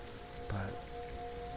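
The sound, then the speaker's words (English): Steady rain patters continuously on a surface, a dense even hiss throughout, with a faint sustained tone in the background and one brief low thump midway. “But for now, I'm just here trying to focus on these bizarrely beautiful frogs and listening to their chiming and trying to soak up this rain and just gather myself, shake off some of these places I've been.”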